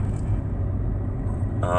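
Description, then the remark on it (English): A steady, heavy low rumble fills the inside of a moving car, constant throughout, with a voice starting to speak right at the end. “Sorry, I'm back in the car anyway.”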